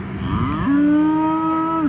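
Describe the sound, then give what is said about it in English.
A single long, low cow moo on a large farm in Lebanon, Tennessee, rises after a brief rumbling start and holds steady for over a second, loud, with no talking. “Huge farm, cows, goats, donkeys, sheep, they're all kind of milling around.”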